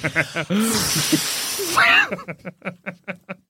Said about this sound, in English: I guess in the rain, it's hard to visibility track. Becomes nothing. Yeah. You can barely hear each other over the torrential downpour.